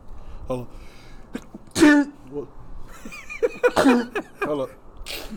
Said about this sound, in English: Hold up. What is that, Corona? You gotta sneeze. Hold up. No, this goddamn just regular. You're supposed to do that under your elbow, man. It's fucking regular allergies, motherfucker.